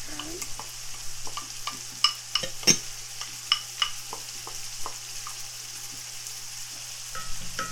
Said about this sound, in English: These mushrooms back here talking shit. They talking shit back here in this pot. This is okay, so we're just gonna let that sizzle for a little bit.